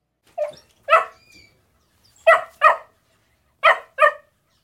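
A puppy barks in sharp, high-pitched yaps, about seven in all, mostly in quick pairs separated by short pauses, with no one talking.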